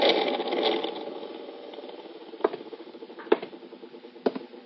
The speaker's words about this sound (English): I'll turn on the overhead fan. Pretty stuffy in here.